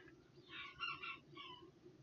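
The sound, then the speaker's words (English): A chicken in a cage clucks and squawks in short, harmonic bursts, fairly loud, with a low background rumble and no voices. “So I looked up how a bat fights, and there was this one video on planet Earth of a technique of a vampire bat to with a chicken in a cage.”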